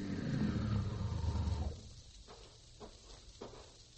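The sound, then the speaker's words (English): A car engine rumbles loudly for about a second and a half, then cuts off, leaving a quiet background with a few faint taps. “Well, there's a car.”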